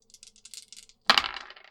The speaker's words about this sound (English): I'm going to add, since I'm using my Voidware backpack, I'll add a die from that. Okay. And I always roll with two as the chill. So I'm rolling three dice total.